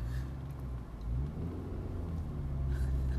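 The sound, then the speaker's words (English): Steady low engine rumble of a car driving back from shopping at Sainsbury's, a continuous deep drone with faint road noise and slight swells in pitch, with no one talking. “We've picked up the shopping. Very exciting, and now we're driving back.”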